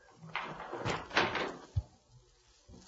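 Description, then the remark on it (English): A door is opened, with a rustling rattle of the handle and wood followed by a single dull thump as it swings or settles. “The door, Markheim! Answer the door!”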